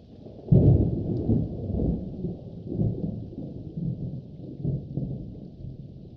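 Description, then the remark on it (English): Steady rain pounds on a concrete quad and the roof of a classroom after dark, heard as a muffled, continuous low rumble that swells in heavier surges. No one speaks. “The rain continues to come down on the concrete quad and on the roof of the classroom.”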